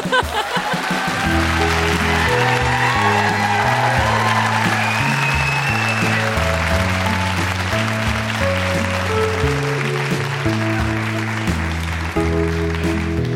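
An audience claps and cheers steadily for the whole stretch, a dense wash of applause over an upbeat music bed with a thumping, stepping bass line, as a round of applause for a guest's mother.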